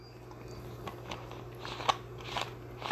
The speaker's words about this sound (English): need to take a slug of water here because my throat's getting dry from, or not dry.